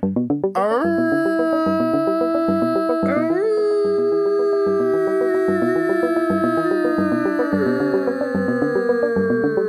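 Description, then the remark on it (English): A long, loud vocal howl that swoops up and then holds, sagging slowly in pitch like a winding-down siren; a second howling voice joins a few seconds in and they drone on together. “Sounded like an ambulance that ran out of batteries.”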